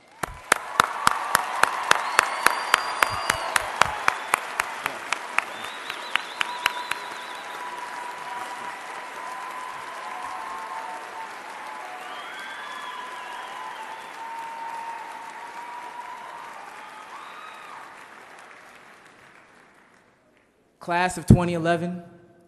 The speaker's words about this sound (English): So, audience, please give your graduates the love and applause they all deserve.